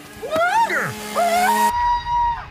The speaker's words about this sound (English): The pumpkin is screaming. Screaming.